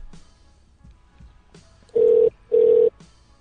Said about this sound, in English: Oh, now I gotta listen to ringing. This is stupid.